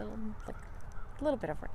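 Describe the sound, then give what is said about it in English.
A couple of crows caw in quick succession near the end, harsh, over steady outdoor ambience on a cloudy, lightly rainy autumn day, with a brief murmur of voice at the start. “You can hear crows in the background.”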